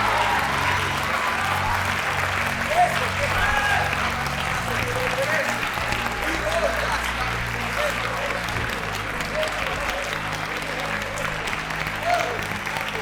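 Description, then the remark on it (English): A large church audience claps steadily for about thirteen seconds, a dense, continuous wash of applause with indistinct voices and cheers mixed into the crowd noise. “Clap your hands and receive that.”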